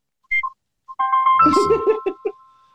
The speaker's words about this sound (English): I was trying to make sure that wasn't me. Oh, somebody's trying to get your attention. That's not my phone. That wasn't my phone. It's on mute. It wasn't my phone. Oh, wait, it was my phone because it's connected to the Rodecaster.